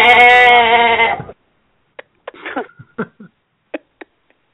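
A single loud, wavering goat bleat lasts about a second, followed by quiet, then a scattering of short clicks and knocks.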